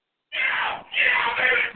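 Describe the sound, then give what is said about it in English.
Forest Hill coaches shouting in the background of a football game after a defensive stop, in two loud, strained bursts, the first around half a second long and the second longer, harsh and high-pitched, with no other talk over them. “They stopped him as the Forest Hill coaches, you can hear them in the background.”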